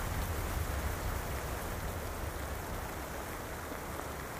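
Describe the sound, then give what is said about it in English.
Steady rain falls continuously at night, a dense, even hiss of drops with a low rumble underneath, moderately loud, with no voices. “Then, without warning, rain on the night of the play.”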